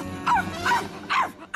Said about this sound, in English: A barking reindeer.